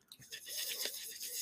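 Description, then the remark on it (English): Steady crunching of someone chewing a crunchy roasted fava bean snack, a dense scratchy grinding with a few sharper bites, fairly loud and with no talking. “Okay, they're not as crunchy as corn nuts. No. They're a little softer.”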